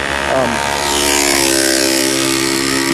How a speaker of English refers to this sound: It's getting really loud out here. There's lots of traffic and stuff. It's starting to be busy.